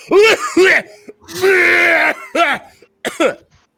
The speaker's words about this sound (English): I did say a little, but you can run with it how you want to. He's got that old man cough now.